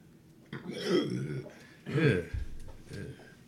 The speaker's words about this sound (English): I'm just saying, do not burp when I'm trying to take a shot. Seriously. Gross. Seriously, that was like, gross.